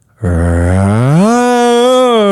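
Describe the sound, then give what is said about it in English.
A voice imitates a motorcycle engine revving in neutral: one loud, buzzing, sustained vocal drone that starts low and climbs smoothly to a higher pitch, then holds there for about two seconds. “It revs exactly like it's supposed to.”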